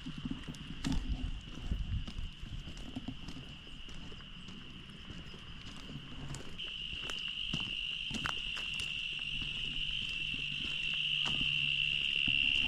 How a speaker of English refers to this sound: Fucking annoying are those cicadas and frogs and shit.